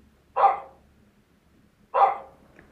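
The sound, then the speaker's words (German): Two sharp canine barks, a wolf's bark from a video game, about a second and a half apart, each loud and clipped with a quick tail, in otherwise quiet surroundings. “Und jetzt noch das Geräusch.”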